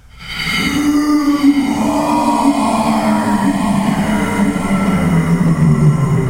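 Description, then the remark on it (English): A voice imitates a snarling scream of rage: one long, loud, raspy cry held steadily for about six seconds, its pitch wavering slightly and sagging toward the end. “And then you can hear a sort of just a snarling, mad scream of rage.”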